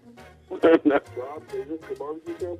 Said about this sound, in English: No, hey, turn your music down and back you there. You're getting an echo.